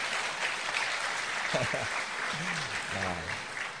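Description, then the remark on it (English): A crowd applauds a couple who have twelve children, with steady, dense clapping that holds at an even level throughout, and a few voices call out briefly over the clapping partway through. “12 children altogether, which deserves a round of applause just in itself.”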